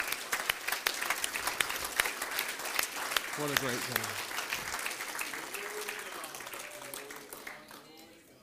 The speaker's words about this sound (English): What a great God. Can we clap our hands together to the Lord?